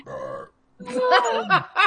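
A voice makes a string of loud, close burping noises: one long throaty belch, a short pause, then several warbling burps in quick succession.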